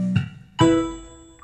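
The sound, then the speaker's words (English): A cell phone rings with two bright chime-like tones, the second louder and slowly fading, followed by a faint short beep. No one speaks. “There's a cell phone going off, huh?”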